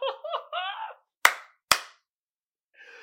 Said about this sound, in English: Hey, man, I got the best audience out there. Give yourself a goddamn hand clap. I appreciate y'all.